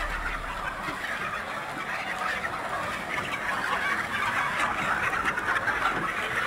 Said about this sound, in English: Wow, what's this? Is that chickens? At the hen house?